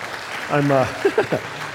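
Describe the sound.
An audience applauds in a steady, diffuse patter of clapping, while a voice rises briefly over the crowd noise with a few short vocal bursts.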